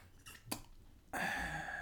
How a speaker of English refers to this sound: No? Did you receive any content from that sip? No. No. No, I just sucked air out of the top of the thermos.